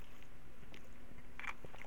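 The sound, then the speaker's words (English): Quiet mouth sounds of someone sipping eggnog mixed with Captain Morgan's rum, a few soft wet clicks and a brief slurp and swallow over a faint steady hum, with no talking. “Just taking a little sip of my eggnog and Captain Morgan's rum, my favorite holiday beverage”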